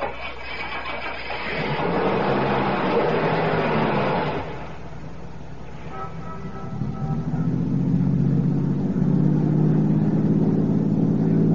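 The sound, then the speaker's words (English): A car engine cranks and catches, idles briefly, then settles into a steady low rumble as the vehicle pulls away and keeps driving, fairly loud with no talking. “Start your car, head west of the highway, and keep going until I tell you to stop.”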